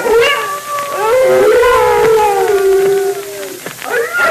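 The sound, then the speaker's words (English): Several timber wolves howl together in long, overlapping wavering cries that rise and fall, loud, filling the whole stretch with a layered chorus; the wolves are gathering and circling in closer. “Those wolves have smelled us, and they're gathering.”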